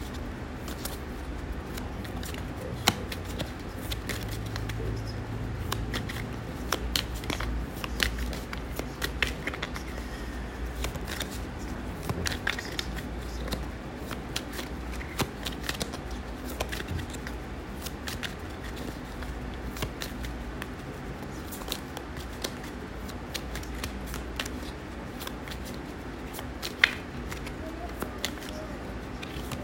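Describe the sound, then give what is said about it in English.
Card shuffling of a deck, with repeated crisp riffles and papery flicks running steadily for about half a minute over a low, constant background hum. “I'm gonna shuffle and see what spirit.”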